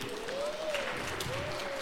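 A brief patter of clapping from a small group of youth and adults for a correct answer about Pancake Day, steady and moderately loud for under two seconds, with a faint rising and falling whistle-like tone threaded through it.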